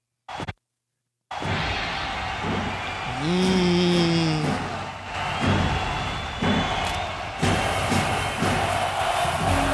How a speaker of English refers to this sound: You can hear the crowd chanting Goldberg as you hear the sparkles flying.